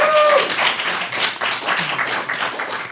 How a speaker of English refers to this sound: A round of applause for ….